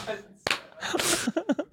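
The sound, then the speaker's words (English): A single sharp, fleshy slap of a bare foot kicking a man's head in a TikTok video rings out loud, then voices chatter and exclaim right after. “Dude, the sound of barefoot on that guy's fucking head. Slap.”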